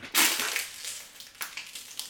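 A just-finished plastic water bottle is crushed between two hands: a sharp, loud crackling crunch at the start, then a run of smaller crinkling pops, with a second burst of crackles toward the end.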